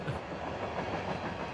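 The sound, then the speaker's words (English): A train rolls past on the tracks running through the back, a steady, dense rumble with the rattling clatter of rail cars running continuously throughout, fairly loud and with no voices. “As, you know, we got the train tracks running through the back.”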